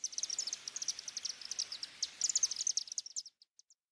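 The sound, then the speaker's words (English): Rapid, high-pitched chittering calls from several chimney swifts pour out in dense overlapping bursts, then thin to a few scattered twitters before falling silent. No voices. “The Wake-up Call: Chimney Swift”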